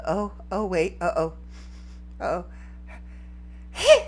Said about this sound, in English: Excuse me. Don't look at me like that. That is how I sneeze.